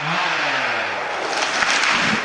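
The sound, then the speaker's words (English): Chainsaws of four men cutting trees in a pine forest just outside Flagstaff, Arizona, in the Coconino National Forest, roar loudly and continuously, a harsh buzzing engine drone whose pitch sags as the blades bite into wood, with no voices. “In the forest just outside Flagstaff, Arizona, four men are busy cutting trees, and their chainsaws ring through the pines.”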